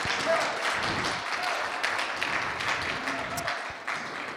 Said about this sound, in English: You can give them a round of applause because they're awesome.